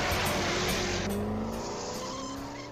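A car being jacked on Sesame Street roars off with a loud tire screech over a rising engine whine, the sound holding steady before easing slightly toward the end. No voices.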